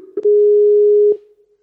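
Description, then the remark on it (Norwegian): A single steady, mid-pitched ringback tone from an outgoing phone call lasts about a second, framed by soft clicks at its start and end, with no talking. “Skal vi ta bare ta ringen, eller? Ja, vi ringer da.”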